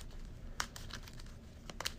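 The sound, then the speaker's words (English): A deck of game cards, with enemy cards set aside into it, being shuffled: quiet papery rustling broken by a few crisp snaps and flicks, with no one speaking. “So, give this a quick shuffle.”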